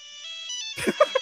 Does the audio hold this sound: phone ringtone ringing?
yes